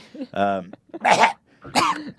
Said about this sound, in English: You coughing up a hairball, man.